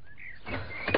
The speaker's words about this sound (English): Oh, sorry to have taken so long to answer the door.